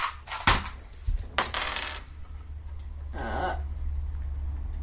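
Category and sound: dice clattering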